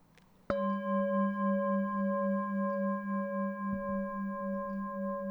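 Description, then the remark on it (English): A single meditation bell is struck once, then rings on with a steady, shimmering tone that slowly pulses and wavers as it sustains. No voices are heard. “So here's the bell again, so you can reconnect.”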